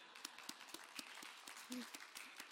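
A small audience claps in a quick, steady rhythm, the applause sounding faint and somewhat distant, with a brief vocal sound rising over it partway through.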